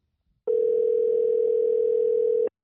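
telephone dial tone

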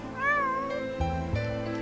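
cat meowing

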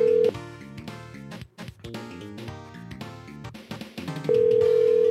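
phone call ringing out

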